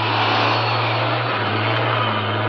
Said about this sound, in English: What's that? Sounds like the truck they were talking about. There it is. The headlights. It's coming this way.